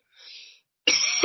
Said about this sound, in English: sorry, there goes the first cough of the day.